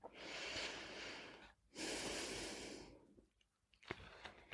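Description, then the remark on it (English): Two long, slow, deep breaths for calming down, each a steady airy rush lasting over a second, followed by quieter, softer breathing sounds trailing off. “Let's slow our breath and breathe out to the count of five, exhaling any stress or tension.”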